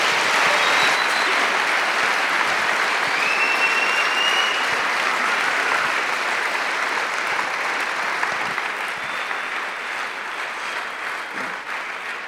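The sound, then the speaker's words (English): Sustained applause from a large audience, a dense steady wash of clapping that holds strong for about twelve seconds and only slightly tapers toward the end, with no talking over it. “Could we give them just a huge round of applause and thanks?”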